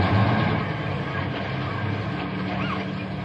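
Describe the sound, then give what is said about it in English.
Several buses coming down the street, their heavy engines rumbling and idling: a loud, steady low drone with a broad wash of mechanical noise that holds without letup for the whole stretch. “Say, here come the buses down the street now.”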